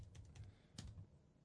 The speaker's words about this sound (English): Type in your password. Because I don't keep people's password. What? It's a keyboard. Have you seen it before? It lights up. Yes, it lights up. It's a cordless keyboard.